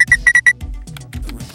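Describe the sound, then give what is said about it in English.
A quick run of five short, high-pitched electronic pings in a steady rhythm, a notification alert showing that a traced phone is on, followed by a stretch of softer muffled rustling and clicking. “And all right, I'm getting a ping.”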